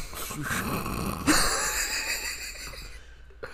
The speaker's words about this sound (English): That was a fart.